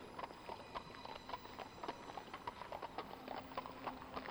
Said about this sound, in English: And all you could hear was the sound of hoof.